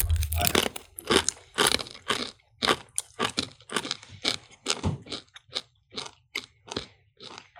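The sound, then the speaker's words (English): Someone chews very dry jerky, almost as dry as a potato chip, producing a steady run of sharp, crisp crunches in an uneven chewing rhythm, loud and brittle, with no talking over it. “So that's how dry it is. I mean, it is almost as dry as a potato chip.”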